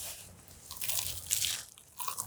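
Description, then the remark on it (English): Bites and chewing of a hot spaghetti bake with meat sauce, noodles, sawdust parm and shredded cheddar cheese: wet squishy crunches and smacking bursts spread over a couple of seconds, no talking. “After those bite sounds, here's a slap real quick.”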